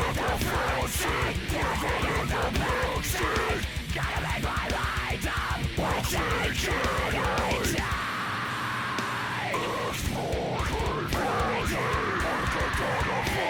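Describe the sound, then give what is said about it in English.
A loud death metal version of a pop song, with screaming metal guitars in place of pop synths, harsh screamed death-metal vocals and a rapid, unrelenting pounding drum track. Partway through, the low end briefly drops out before the full band surges back in. “versions of this song was a death metal version, right, which replaces the kind of pop synth instrumentation with like screaming metal guitars and kind of unrelenting drum track, but also with these kind of screaming death metal vocals as well.”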